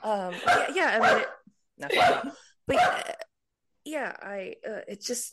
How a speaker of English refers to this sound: I said a misogynistic word and my dog's yelling at me about it. Good girl.